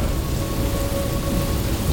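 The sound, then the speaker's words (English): Heavy rain pours down in a dense, steady hiss, with a deep rumble of thunder rolling underneath for the whole two seconds. The storm is loud, and no one speaks. “The storms here are quite lethal.”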